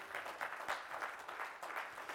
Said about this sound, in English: Can you give Jesus Christ a round of applause, church?